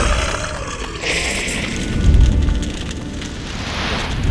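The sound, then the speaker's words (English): Steady heavy rain hisses throughout, and a deep rumble of thunder swells up partway through before settling back under the downpour. No voices. “I can't hold his fire off for long. Not and keep the storm up.”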